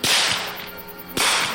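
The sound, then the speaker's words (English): Two loud, sharp gunshots ring out about a second apart, each a harsh crack with a brief ringing tail, and no voices. “Two quick explosions.”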